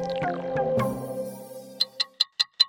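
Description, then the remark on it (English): A descending, ringing tonal sweep fades out, then a clock ticks five times in quick, even succession, each tick sharp, crisp and close, with no voices present. “Do you hear that? That's the clock counting down to the Brisbane 2032 Olympic and Paralympic Games, which, if you can believe it, are only 10 years away.”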